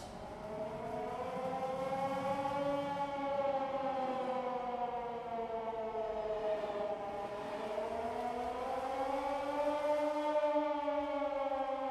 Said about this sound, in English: Well, I remember the reason I chose the next song is actually because of the transition. Ah. I've got written down here, sirens in both songs.